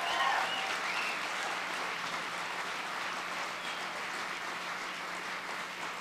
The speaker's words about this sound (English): And I appreciate all of the storytellers' willingness to be vulnerable and brave on stage. Let's again give them a big round of applause.